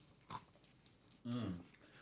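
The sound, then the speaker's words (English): One sharp crunch as a Kit Kat chocolate-coated wafer bar is bitten, followed a moment later by a short voiced murmur from the person eating. “And listen to the crunch.”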